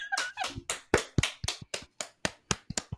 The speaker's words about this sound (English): Round of applause. Round of applause.